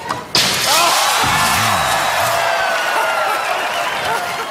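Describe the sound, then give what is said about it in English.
A sudden loud smash of breaking glass bursts out as Serena breaks a window in a pre-planned late-night TV show bit with David Letterman, then a crowd roars, cheering and shouting steadily for several seconds. “Serena broke the window.”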